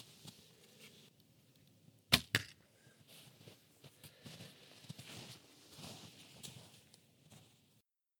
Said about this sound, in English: But now I'm feeling that I need to get back going with the bow, which is why I'm actually in the orchard right now, is that I am just going to shoot a few arrows and start getting ready for spring bear.